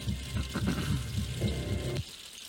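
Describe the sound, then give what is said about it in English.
Steady, rushing patter of rain, a dense watery hiss with some lower splashing underneath, holding fairly loud for about two seconds before dropping off abruptly. “Okay, the rain's kicking in now, guys.”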